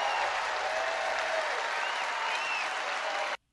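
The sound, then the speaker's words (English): A crowd at a Donald Trump rally claps steadily and densely for about three seconds after his call for the death penalty for drug dealers, a broad wash of applause with faint cheering tones mixed in, then it cuts off abruptly into silence. “So then when those two applause lines contradict, we get the moment that you just saw, complete and total confusion and panic.”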